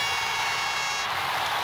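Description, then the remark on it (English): An air horn sound effect gives a loud, sustained blast, bright and brassy with stacked harmonic tones, holding steady for over a second before its pitch shifts slightly near the end. “That's the gold standard air horn.”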